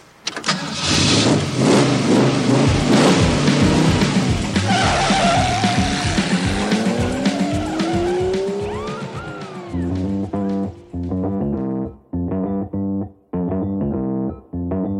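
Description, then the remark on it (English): A car engine starts and revs loudly, tires squealing as it accelerates away, then the engine drops to a choppy, pulsing idle with rhythmic bursts of exhaust. “If you had access to a car like this, would you take it back right away?”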